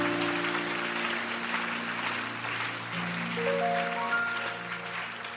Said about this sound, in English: And somebody clapping and somebody blessing God.